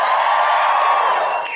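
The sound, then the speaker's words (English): An audience at a show in Canberra cheers loudly when asked who is there for the first night, a dense wash of shouts and whoops that holds steady for over a second before tapering slightly at the end. “Give us a cheer if this is your first night.”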